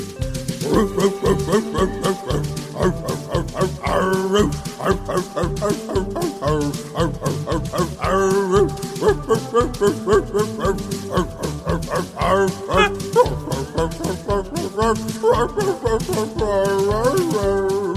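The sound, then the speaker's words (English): A human voice on an album track imitates a dog, barking, yipping and whimpering in quick repeated bursts, loud, over a steady rhythmic backing throughout. “That's just dog. I'm glad you cut it off before snake.”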